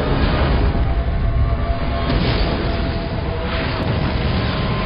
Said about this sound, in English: Boom. Two drones took out. Maybe they keep tunneling until they hit something vital. When Sam says, you know, perhaps you hit something vital and then it blows up, even they know it's ridiculous.